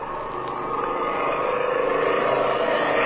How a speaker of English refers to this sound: the drone of an airplane is heard approaching the ranch.